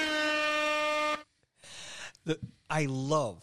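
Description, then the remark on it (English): A loud, steady air horn blast holds for about a second, then cuts off, followed by a burst of hissy noise and a short, bending, voice-like tone. “No, hit him with the air horn for that, actually.”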